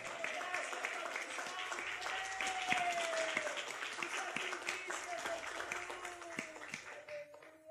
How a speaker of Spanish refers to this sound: Aleluya. Gloria a Dios. Un aplauso al que vive.